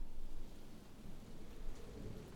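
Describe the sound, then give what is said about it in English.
Heavy rain pours down in a steady, dense hiss while a deep rumble of thunder rolls underneath, continuous with no voices. “I awoke to a heavy rain.”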